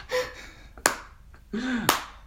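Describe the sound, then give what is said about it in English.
Two sharp, single claps land about a second apart in a slow, deliberate, sarcastic slow clap, fairly loud, with brief vocal sounds around them, imitating an imagined 'Fatbit' fitness tracker clapping after the tenth step of the day. “With a Fatbit, after your 10th step of the day, it has like a sarcastic little clap, like a slow clap.”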